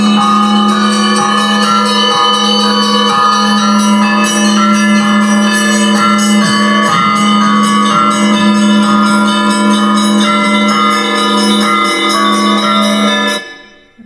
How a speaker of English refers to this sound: Just wanted to actually play the Easter bell ringing, which reminds you of one of the preludes that you're going to play later, which is the B-flat major one, which I also think has this triumphant Easter bells in it.